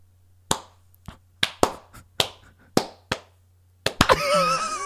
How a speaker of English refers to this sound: You were deserving of those four claps because there is something special about you.